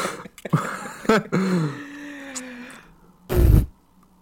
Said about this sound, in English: What was that? He just keeps farting.